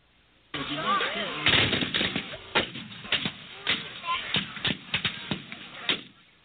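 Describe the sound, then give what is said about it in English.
Irregular volleys of sharp gunfire and booming artillery blasts as Oklahomans reenact the Civil War Battle of Honey Springs, roughly a dozen loud cracks over a few seconds, with a muffled rumble of voices and movement underneath. “Oklahomans reenacting the Civil War Battle of Honey Springs.”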